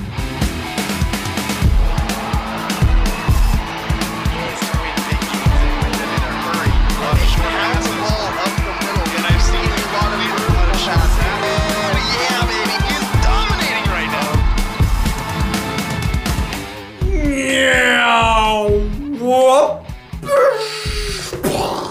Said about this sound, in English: Is that a car crash?